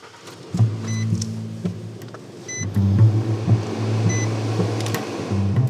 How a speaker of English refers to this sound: I hop in his truck and away we go. All right, off we go.